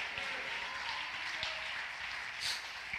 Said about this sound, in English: Oh, clap your hands and shout hallelujah.